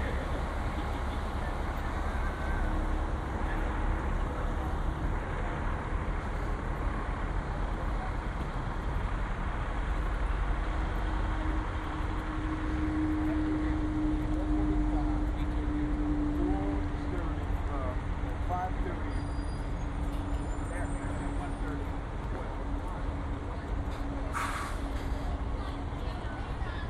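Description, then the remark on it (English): Continuous roar of road traffic at a bus stop, with vehicles rumbling past steadily and a low engine drone rising midway, outdoors at a roadside with no one speaking. “This is where we catch our bus.”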